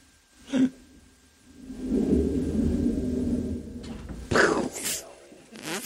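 A person slams into a door: a sharp thud, then several seconds of low rumbling and scraping, followed by a couple more loud knocks and bumps near the end.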